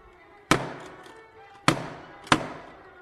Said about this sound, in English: Come on, Watson! Help me break in the door!